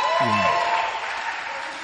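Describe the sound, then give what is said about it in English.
An audience claps during a church service, a dense, steady wash of many hands that stays loud throughout, with a brief voice rising over it near the start. “As you are clapping, your wedding dress is also being made.”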